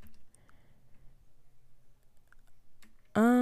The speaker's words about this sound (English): Let's see. I'm typing in the question.